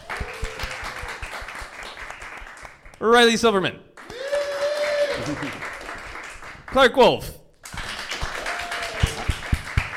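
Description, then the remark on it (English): A crowd claps steadily, a dense crackle of applause running through the whole stretch while a voice calls out names over it, with a couple of louder, excited shouts breaking through. The audience is applauding to choose the winner of a quiz. “Okay, I'm going to let the audience determine who won our quiz by applause.”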